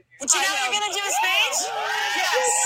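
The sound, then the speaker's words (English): A group of people cheer and whoop together as a woman is asked to give a speech, with overlapping high-pitched shouts and rising, sliding voices that stay loud and continuous for a few seconds. “I love that everyone starts cheering and she's like, oh, no.”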